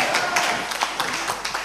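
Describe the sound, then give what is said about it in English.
An audience claps together in praise of the Lord, a dense, steady wash of many hands with loose rhythmic surges, loud and continuous throughout the short moment, with no talking on top. “Give the Lord a clap.”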